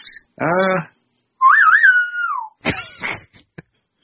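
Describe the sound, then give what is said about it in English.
A short, wavering whistle rises and dips for about a second, fairly loud, someone whistling to call a pet rat, with brief voice sounds just before and after. “I feel like we're in a Western and you're like whistling for your horse or something.”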